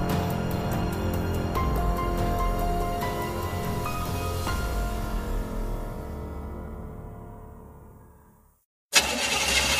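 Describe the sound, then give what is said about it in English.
A car engine sputters and struggles with uneven, faltering bursts, gradually losing power until it dies into near silence, then a brief loud burst of noise cuts in at the end. “A car breakdown could cost you thousands to repair,”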